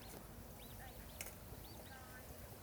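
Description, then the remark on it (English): Ducklings peep in a scattered series of short, high, rising-and-falling chirps, faint over steady outdoor background noise, as someone walks past them. “Just walking past some very cute ducklings.”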